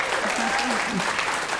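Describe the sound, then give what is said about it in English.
An audience applauds steadily for over a second, a dense, even wash of clapping with a few faint voices cheering underneath. “That's worth cheering.”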